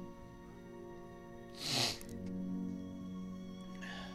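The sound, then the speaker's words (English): A person gives one short, sharp gasp, a breathy rush of air lasting under half a second, over a steady low electrical hum with no talking. “Were you gasping at the book you're reading or at the damn it?”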